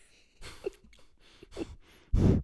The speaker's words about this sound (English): Every time I make a bad joke, I'm just going to breathe heavily into the microphone. Please don't. Like a panting dog.